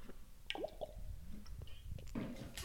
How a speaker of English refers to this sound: If you have or have not, I want you to grab your water with me. We're going to hydrate on 3, 2, 1. Cheers to hydration.